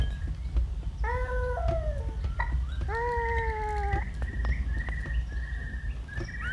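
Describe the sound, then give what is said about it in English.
Bird calls ring out over a steady low outdoor rumble: a few drawn-out, harmonically rich cries, followed by repeated quick trilling phrases, clear with no talking. “Now, I'm listening to the noises that she is making, trying to decipher meanings that feel as old as the birds themselves.”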